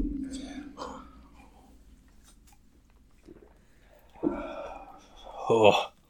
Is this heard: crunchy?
yes